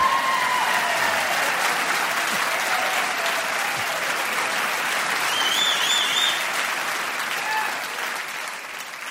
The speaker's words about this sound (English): Let's have the applause again, and go!